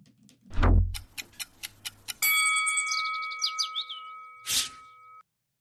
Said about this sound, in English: There's the clock. As soon as that starts going, there it is.